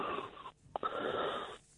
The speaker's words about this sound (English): again with the breathing, mate. Please. Sorry.